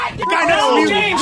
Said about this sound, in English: stop screaming. The guy didn't have a window and he's freaking out.